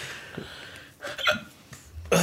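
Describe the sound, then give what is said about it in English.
A few abrupt hiccups jolt out against quiet breathing, spaced unevenly, with a louder, sharper one at the very end. “I think I have the hiccups now, right before we record.”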